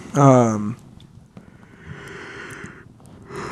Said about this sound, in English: Excuse me. Big fucking yawn.